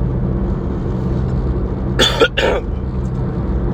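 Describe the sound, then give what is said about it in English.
Two quick, rough bursts of coughing and throat clearing from a tickle in the throat, one right after the other, heard over a steady low rumble like a car engine running. “I really have had, like, a tickle in my throat all day.”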